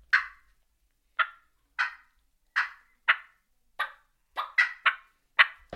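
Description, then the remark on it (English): A wild turkey clucks repeatedly, about ten sharp, short clucks spaced at uneven intervals, quickening toward the end, clear in an otherwise quiet setting. “But if you then hear the cluck, you're like, oh, here they are.”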